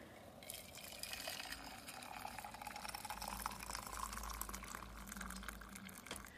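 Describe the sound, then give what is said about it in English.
Water pours steadily into a vessel, a continuous splashing, gurgling stream that holds fairly even for several seconds, with no talking. “Okay, now we put in water.”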